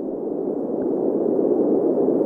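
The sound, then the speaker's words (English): A steady 300 to 450 hertz test tone, the third of three test sounds used to check whether snakes can hear, sounds as a low, rumbling band of noise, holding an even loudness for about two seconds with no voices over it. “So we got 0 to 150 for the first one, 150 to 300 for the second one, and 300 to 450 for the third one, that higher pitched one.”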